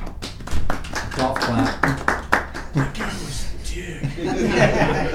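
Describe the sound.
A small group claps for a few seconds, irregular hand claps close by, mixed with chuckling and some talking, and the clapping fades out partway through.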